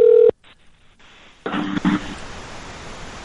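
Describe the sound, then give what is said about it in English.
A brief, loud electronic phone tone cuts off abruptly, followed by near silence and then a burst of hissy line noise with a couple of faint beeps, like a call being placed. “Let's try a call again.”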